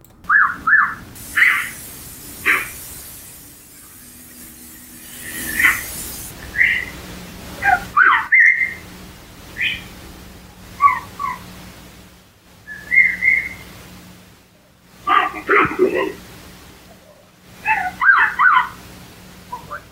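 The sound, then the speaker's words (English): Short, tonal whistles come in scattered bursts, some rising, some wavering, trading back and forth across an outdoor field recording with faint background hiss and no talking. “And I believe the Bigfoot was whistling back at him, which is another vocalization I've heard about.”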